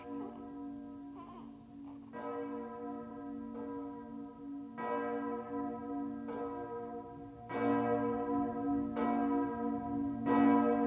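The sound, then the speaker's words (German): Church bells ring out in a steady, repeating peal, each strike leaving a long shimmering hum that overlaps the next, growing fuller and louder toward the end with no voices. “Wir wünschen dir, sollen es die Glocken sagen.”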